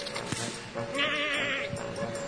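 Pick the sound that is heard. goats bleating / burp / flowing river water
goats bleating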